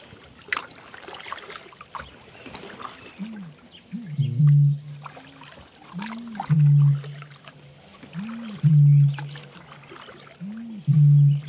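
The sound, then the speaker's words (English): A bittern booms four times at steady two-second intervals by a lake, within about 40 metres, each deep, hollow low-pitched boom preceded by a soft upward gulping note, over a faint wash of background birdsong. “Booming bitterns”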